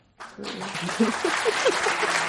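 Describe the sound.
A crowd bursts into steady applause after a brief quiet moment, the dense clapping sustained and fairly loud, with a few voices calling out or cheering beneath it.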